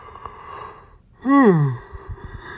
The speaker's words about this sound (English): Ignore that yawn.